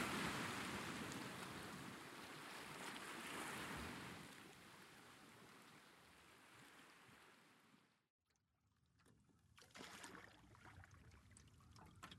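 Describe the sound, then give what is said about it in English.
A man rows a boat carrying a woman out across calm water towards a bay: steady swishing and lapping around the hull, with quieter splashes and trickles after a brief pause, fairly soft with no voices. “Edward Springrove rows them out towards the nearly opposite bay of Laystead Shore.”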